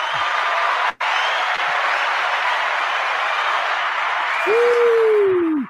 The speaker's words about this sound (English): without further ado, ladies and gentlemen, let's give them a round of applause here.